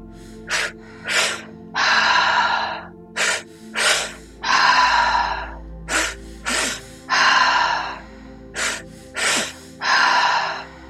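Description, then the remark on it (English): Loud breathing in a steady cycle during a breathing exercise: two quick, sharp sniffing inhales, then a long, forceful, breathy exhale, repeated about four times with no talking. “And on the exhale, I encourage you to continue just releasing more of that audible sound, whatever feels good for you.”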